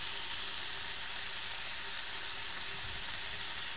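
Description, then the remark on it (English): Bacon rashers sizzle steadily in a frying pan as a second rasher is dropped in, a continuous dense crackling hiss with no pauses, moderately loud, with no voices over it. “He's dropped it in. You're hearing the sizzling right now intensify quite a lot.”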